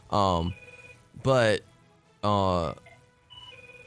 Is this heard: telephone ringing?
yes